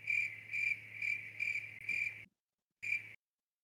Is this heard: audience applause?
no